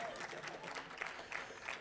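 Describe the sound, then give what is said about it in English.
An audience claps steadily, a dense, even wash of many hands at a fairly constant loudness for about two seconds, with a few slightly sharper claps standing out. “Well, I figured I'd get some hand clapping out there.”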